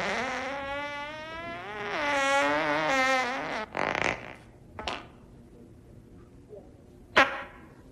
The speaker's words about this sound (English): Was that a fart? I don't know. I can taste it. On my tongue. Okay, I'll be honest with you. I did fart. Is that onion? Onion and ketchup. It stinks.